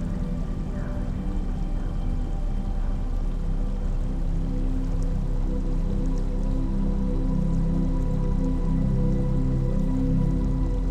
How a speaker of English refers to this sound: The trickles of running water play in the background, like the notes of your favorite song.